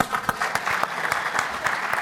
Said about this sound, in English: Please join me in a round of applause to thank them for their support.